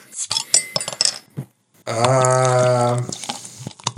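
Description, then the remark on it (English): A glass bottle and its metal Forex bottle top clink together in a quick series of light, bright taps, followed by a sustained humming tone and a few more faint clinks. “Tell us what your Forex bottle top says.”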